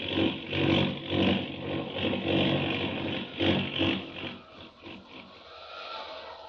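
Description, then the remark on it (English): The engine of an out-of-control airplane carrying Clark Kent, in a Superman story, roars in a tailspin dive, a dense, rumbling drone that surges in pulses for about four seconds, then thins and eases to a lower, steadier hum. “That plane, it's out of control, falling fast.”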